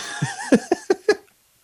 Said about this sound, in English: So you're clearing your throat.